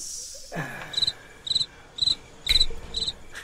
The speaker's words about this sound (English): And then you can overlay the crickets on top of that.